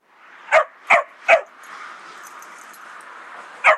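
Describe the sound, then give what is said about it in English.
A dog named Tippy barks three times in quick succession, then falls quiet for a couple of seconds before a fourth bark; the barks are loud over a low, steady background hiss. “The next involved a dog named Tippy.”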